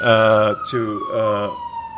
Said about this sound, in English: We should point out that these sirens are not sound effects.